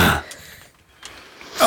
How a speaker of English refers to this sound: I'm going to blow my nose, so my nose is clean for the smelling.